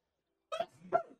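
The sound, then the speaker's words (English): A single sneeze, a short voiced intake followed by a sharper, louder burst, about half a second long, with silence around it and no talking. “I forgot my sneeze button.”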